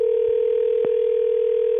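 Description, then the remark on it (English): A steady, unbroken telephone ringing tone on an outgoing call hums through a phone line at even loudness, with a couple of faint clicks along the way and no one speaking. “I haven't been able to get him to answer the phone all day.”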